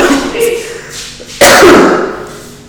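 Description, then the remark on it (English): A single loud, sharp cough bursts out, trailing off over about a second, preceded by quieter breathy vocal sounds. “Come on and cough all over.”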